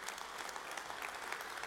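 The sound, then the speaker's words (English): A church audience at Woodlake claps steadily to welcome guests, a dense wash of many hands with no breaks or single voices standing out, holding at a constant moderate level throughout. “Hey, so Woodlake family, give all of our guests just a huge round of applause.”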